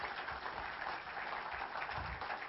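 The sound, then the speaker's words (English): Steady applause from an audience, a dense crackle of many hands clapping at once with no pauses, holding an even loudness throughout. “I think you ought to clap right there.”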